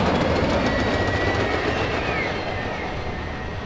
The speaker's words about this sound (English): But certain things persist. I will always be lulled by the city's lurching trains. This is Adams and Wabash.